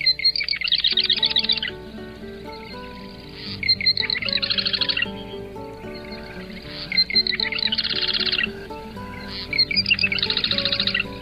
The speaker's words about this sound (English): The Heinz 57 varieties bird, Cystothoris palustris. The marsh wren, today's Talkin' Birds featured feathered friend.